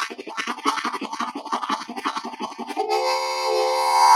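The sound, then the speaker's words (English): A harmonica mimics a train: rapid, breathy rhythmic chugging for a few seconds, then a sustained, reedy whistle-like chord that swells louder to the end. No one speaks. “I mean, early on, people discovered that they could imitate a train.”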